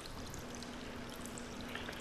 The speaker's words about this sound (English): Because I'm like running the shower and the sink water, just trying to keep it full, but there's this leak.